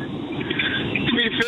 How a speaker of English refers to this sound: in a traffic tunnel.